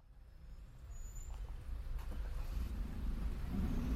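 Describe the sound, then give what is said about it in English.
Low rumbling city traffic in Mexicali, a large city with a lot of cars, swells steadily, cars droning with engine noise building louder toward the end, no voices heard. “It's a city, a large city, with a lot of cars and not very good quality of the air.”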